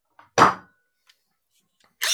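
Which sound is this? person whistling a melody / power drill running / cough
power drill running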